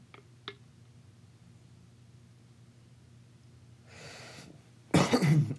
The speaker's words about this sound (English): Excuse me. Yeah, that probably won't be edited out just because it's episode zero, so. That's fine. People cough, it happens.